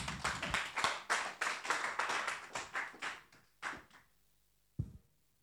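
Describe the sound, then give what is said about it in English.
A church audience claps hands together in a quick, uneven burst for about four seconds, then the clapping thins to a few scattered claps and stops, followed by a single soft thump. “You didn't clap your hands.”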